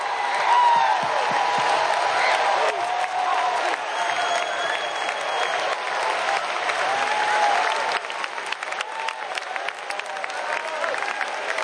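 A large crowd claps steadily and loudly, with scattered shouts, cheers and whoops rising over the dense applause, which eases slightly toward the end.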